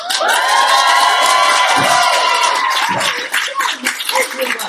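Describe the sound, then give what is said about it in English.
A live audience at LeakyCon 2014 in Orlando cheers and claps loudly, with high-pitched shouts and whoops rising over steady applause, then the crowd noise thins toward the end. “I do not usually permit people to clap if I am talking.”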